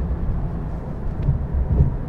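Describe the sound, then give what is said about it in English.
A steady, deep engine rumble from a 3-litre turbocharged flat-six Porsche's sports exhaust, a dense low growl holding even loudness for about two seconds with no talking. “The big controversy about this, of course, is the engine, down to 3 litres, turbocharged in this car, but still an evocative note from the sports exhaust and the flat six.”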